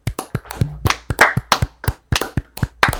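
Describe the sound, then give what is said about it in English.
A few people clap their hands together in a brisk, slightly uneven burst of applause to celebrate crowning Peter Pan winner of a worst Disney character bracket, fairly loud, lasting a few seconds with no talking. “And we're going to do, as we do in every episode, we're going to clap it out.”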